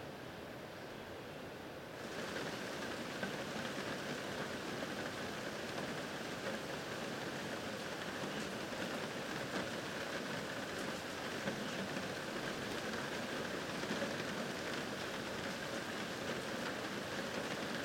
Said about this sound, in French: Puis tu longes la rivière. Et tu l'entends constamment, la rivière. Même la nuit, des fois, tu dis, « Hey, elle est ben trop bruyante. »